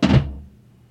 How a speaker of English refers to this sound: How about a roll to a thump at the end?